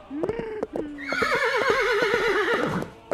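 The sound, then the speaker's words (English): A horse being ridden through a neighborhood whinnies in a long, wavering, shrill neigh, with sharp clip-clop hoofbeats tapping in uneven rhythm throughout, loud. “I am just trying to ride my stately horse through this paltry, horseless neighborhood, and I heard all this commotion.”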